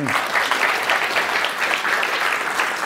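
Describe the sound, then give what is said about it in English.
A crowd at an Intelligence Squared debate claps steadily, a dense, even wash of many hands that holds at a strong, constant level for the whole stretch without fading or breaking into cheers. “I will not interrupt an applause line for Intelligence Squared.”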